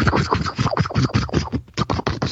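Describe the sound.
A person imitates a helicopter with their mouth, making a fast, steady run of breathy, chopping pulses that mimic whirring rotor blades, fairly loud, with one brief break partway through.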